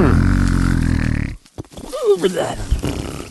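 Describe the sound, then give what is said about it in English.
A voice imitates a wolf's loud, rumbling snoring as it lies by a tree, in one long, gravelly, growling breath lasting over a second, followed by a brief pause and then spoken voice. “When they came to the meadow, there lay the wolf by the tree, snoring so loudly that the branches shook.”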